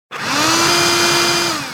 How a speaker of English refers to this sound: A vacuum cleaner! Not just any vacuum cleaner, a robotic vacuum cleaner.